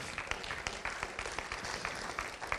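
An audience claps together in a dense, steady burst of applause, many hands overlapping into a bright, continuous patter with frequent sharper claps standing out. No voices rise above it.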